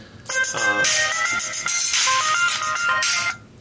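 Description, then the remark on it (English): A loud, bright electronic phone ringtone plays a quick melodic pattern of tonal beeps for about three seconds, clear, with no talking over it. “phone. He's busy right now. Can I take a message?”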